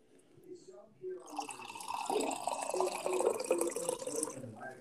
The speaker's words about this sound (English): Wow, so, you're really pouring there, aren't you?